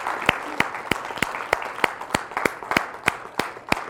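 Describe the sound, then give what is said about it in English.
An audience at a church service claps in praise for the young people, sharp hand claps landing together in a steady, even beat about three times a second over a constant wash of scattered applause. “Come on, give our young people a hand clap of praise.”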